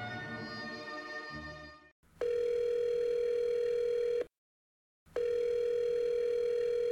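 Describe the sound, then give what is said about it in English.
A telephone rings with a loud, steady electronic tone in two long bursts separated by a short silence, preceded by a brief muffled burst of other sound. “Oh, we leave the phone ring in for tradition and lazy editing.”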